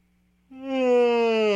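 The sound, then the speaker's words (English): A person yawns aloud, a single drawn-out, voiced groan-like exhale that starts abruptly after a brief near-silent moment and holds a steady, slightly falling pitch. “Pause for yawn.”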